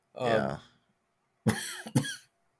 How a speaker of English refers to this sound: Sorry guys. Sorry. This cough is killing me.